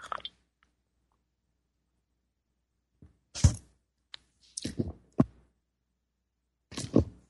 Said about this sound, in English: Time for me to take a sip of my tea here.